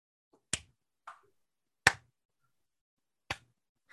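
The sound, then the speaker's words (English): A slow clap: three loud, sharp hand claps spaced well over a second apart, with a few softer taps between them and no voices. “Slow clap.”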